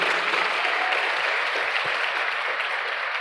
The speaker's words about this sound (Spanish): ¿Le podemos dar un aplauso a los papás que están aquí en este día?